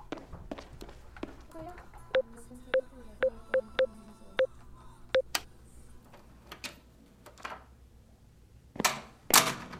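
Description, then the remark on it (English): Two sharp finger snaps, given as a signal that instructions were understood, near the end, after a run of evenly spaced, crisp ticking clicks over a low, steady background hum. “Snap your fingers twice if you understand the instructions and then put the earpiece in your pocket.”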